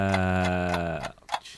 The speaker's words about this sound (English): Oh, time's ticking.